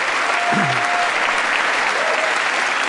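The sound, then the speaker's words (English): Steady, dense applause from a large indoor audience fills the whole stretch, a continuous wash of clapping at even loudness with no voices standing out. “Yeah, it makes sense they want to, you know, all these Democrats are, like, applauding.”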